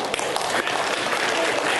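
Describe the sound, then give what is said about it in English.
A church audience claps together for church staff members in a dense, steady burst of applause, many hands at once, fairly loud, sustained evenly for the whole couple of seconds. “He's not wanting to take none of the Lord's glory, but it is okay to clap for people who serve the Lord.”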